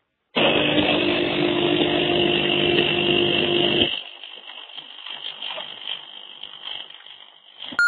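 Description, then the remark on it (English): A coffee machine runs with a loud, harsh grinding whir for a few seconds, then drops to a softer hissing rumble that continues before a brief tone at the end. No one speaks. “This is what my coffee machine sounds like.”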